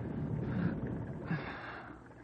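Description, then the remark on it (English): Two drawn-out, breathy groans, each rising and then fading, with a short pause between them. They sound like someone moaning in their sleep, with no speech. “stop groaning in your sleep.”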